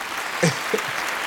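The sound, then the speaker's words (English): A steady wash of applause sound effect, played by pressing a button, fills the short clip at an even level, with a couple of brief tonal blips breaking through near the middle. “Give a round of I don't applause have... for that.”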